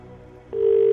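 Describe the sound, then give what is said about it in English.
A single burst of a telephone ringing tone on an outgoing call made by a radio presenter to a game contestant: a steady, low electronic purr lasting under half a second, clear, following a moment of faint line hiss. “2 rings.”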